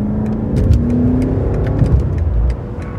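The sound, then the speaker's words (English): Gladwell's own 2003 BMW M5 sports sedan's engine revs loudly, its rising growl sustained for about three seconds with a steady rumble beneath and no voices. “And we're doing it at the wheel of Gladwell's own 2003 BMW M5.”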